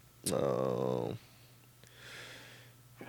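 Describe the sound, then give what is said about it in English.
A single loud sneeze: a sharp burst that trails into a drawn-out voiced tail lasting nearly a second, followed by a softer exhale. “Bless you. Damn. Thank you.”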